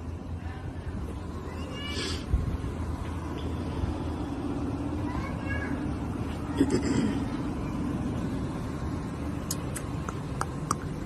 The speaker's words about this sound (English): That car sound good, though. Y'all see how quiet this car is?